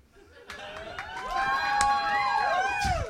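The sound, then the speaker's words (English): A large audience claps and cheers together, a steady wash of applause with many excited voices whooping and shouting over it, building slightly and staying loud throughout. “People always clap like you're fans, and it's the 90s.”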